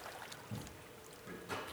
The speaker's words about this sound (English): Just hear a little bit of trickle of water as you pull through.